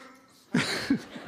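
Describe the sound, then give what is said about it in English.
A person imitates a Wookiee growl: a raspy, throaty burst lasting under a second, swelling twice, with no other talking around it. “You couldn't be here without hearing her loud voice bursting suddenly into some random show tune or into some weird Wookiee growl thing.”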